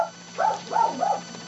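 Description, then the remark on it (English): A dog on a set barks three times in quick succession, short muffled yaps at moderate volume, with a steady low electrical hum underneath and no one talking. “Hey, wild dog on the set.”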